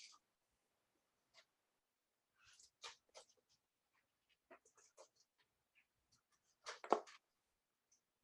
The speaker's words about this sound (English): Sorry, I got a... My dog's barking. Is that your German Shepherd?